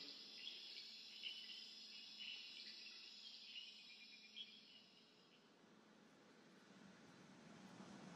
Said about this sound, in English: Got like the sound of the jungle or something like that.